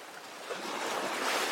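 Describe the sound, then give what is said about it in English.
Ocean waves wash onto the shore in a steady, broad hiss of surf that swells slightly louder toward the end, with a soft breeze in the background and no voices. “Taking in the beauty of the sounds and sights of the ocean around you, you continue walking down the beach towards the water's edge.”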